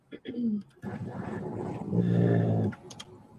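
A dog named Boba whines and groans in low, drawn-out moaning tones, two vocal bursts with a short one first and a longer, louder complaint later.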